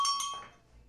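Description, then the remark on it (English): A small bell dings twice in quick succession, its bright, high metallic tone ringing briefly before fading away to quiet. No one speaks over it. “I'm going to let that bell go.”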